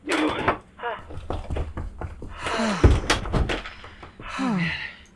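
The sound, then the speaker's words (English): A door swings open and slams shut with one heavy thud midway through, followed by a few quick knocks, while voices talk before and after. “Gray, they're here. Open the door.”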